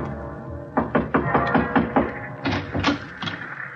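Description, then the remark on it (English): Someone knocks on the wooden door of a beach house, firm raps in a few uneven bursts of two or three, about ten in all, over a low steady background hum with no talking. “I knocked on the door for a good minute before it finally opened.”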